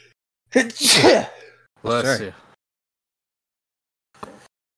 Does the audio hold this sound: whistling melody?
no